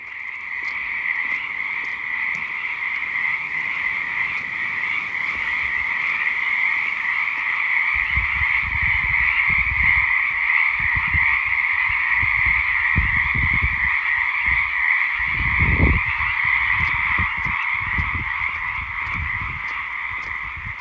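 A dense, continuous chorus of frogs croaking and trilling in steady overlapping pulses, fairly loud, with intermittent low thumps underneath in the second half, after a week of good rain. No voices.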